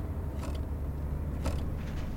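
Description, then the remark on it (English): A car rolls to a halt with brakes that feel loose and a broken line, its low engine rumble steady underneath while the brakes give a couple of short creaks and squeaks. No one speaks. “Why are we stopping? Something's wrong. Brakes feel loose.”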